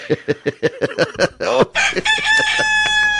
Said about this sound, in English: Lord, she's found the Gonzo Rooster button.